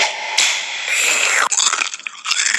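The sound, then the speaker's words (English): Wet chewing and smacking mouth noises fill a few seconds, a steady hissy mashing broken by several sharp clicks and squelches near the end, with no words spoken. “Oh, I'm gonna chew it like gum.”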